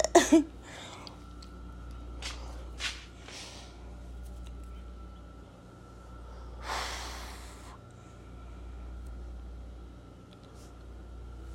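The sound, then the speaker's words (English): Heavy, airy breaths during a breathing exercise: a few short huffs early on, then a longer, deeper exhale around the middle, over a low steady hum. “Yes, I'm doing some breathing work. Hopefully you can't hear it, but if you can, get there.”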